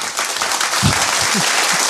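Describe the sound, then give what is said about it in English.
An audience applauds steadily, a dense wash of many hands clapping at an even, fairly loud level throughout, with a few low thumps and murmurs mixed in. “This crowd loves it when you say yes.”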